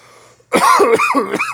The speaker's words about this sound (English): Oh, man. Oh. If you like coughing directly into the microphone,